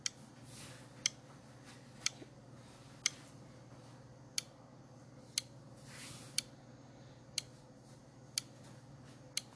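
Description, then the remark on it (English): A clock ticks steadily, about once per second, with crisp clicks over a faint low hum and no voices, counting down the time to answer a quiz question. “Time's ticking.”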